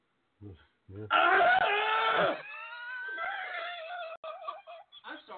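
A person lets out a loud, drawn-out scream after a couple of short vocal bursts, then trails off into quieter, broken wailing and yelps for a few seconds.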